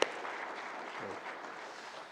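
A crowd claps steadily, a dense, even wash of many hands applauding that holds at a constant moderate level for the whole stretch, with no voices over it.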